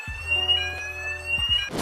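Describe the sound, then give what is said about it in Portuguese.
A laboratory fire alarm rings steadily with a shrill, continuous electronic tone, layered with a low pulsing buzz, loud, with no one speaking. “É o alarme de incêndio do laboratório?”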